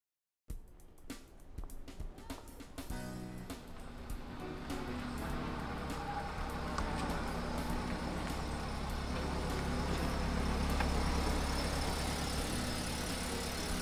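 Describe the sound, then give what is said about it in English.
A van pulls into the parking area of a donut shop with its engine rumbling steadily. A low, continuous drone grows slightly louder over time after a few brief clunks at the start. No voices. “He pulled to the parking area for the Ma and Pa donut shop nearby.”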